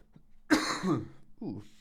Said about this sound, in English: Terribly sorry about this cough. It's probably very annoying to hear somebody cough on the podcast.